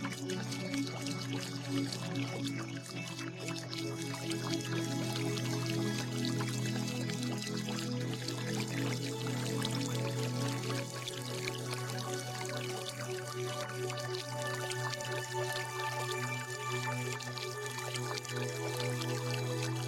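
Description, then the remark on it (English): A steady wash of flowing water runs continuously, blended with a low sustained hum and soft, slow musical tones, in a meditation mix of flowing water sounds, binaural beats and music. No one speaks. “This is a combination of some flowing water sounds, binaural beats, and then some music”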